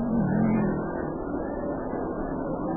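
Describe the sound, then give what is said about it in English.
A steady, muffled roar of race car engines droning together as the cars drive around a track, with a slight rising whine early on before settling into a continuous low rumble; no voices. “Yeah, the cars will light up if they go around the track, and they'll fall in behind the lead car.”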